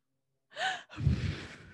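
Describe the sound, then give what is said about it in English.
A sharp, close inhale followed by a long, heavy exhale rushing right against the microphone, breathy and loud, with no talking, as a mother breathes heavily into her microphone. “why are you breathing so heavy into your microphone, Mom?”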